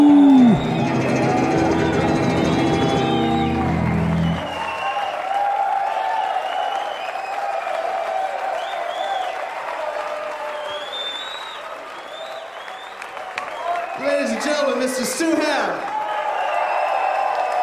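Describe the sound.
A crowd cheers and applauds loudly, with yelling voices over steady clapping. A brief loud burst near the start fades into sustained crowd roar, then a swell of whoops near the end.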